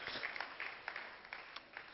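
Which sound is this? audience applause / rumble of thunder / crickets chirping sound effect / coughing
audience applause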